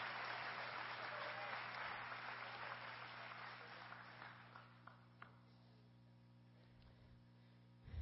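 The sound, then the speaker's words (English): A church audience claps hands to thank God in a dense, loud burst of applause that gradually thins out, ending with a few scattered claps over a steady low hum. “Somebody clap your hands and thank God for the father's house.”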